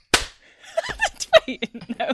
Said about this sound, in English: If you're happy and you know it, clap your hands.